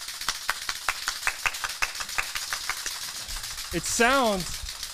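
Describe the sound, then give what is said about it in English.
Sparse, steady clapping: sharp, evenly spaced claps for about three seconds, followed by a brief rising and falling vocal whoop as the clapping fades. “Round of applause, please give it to me.”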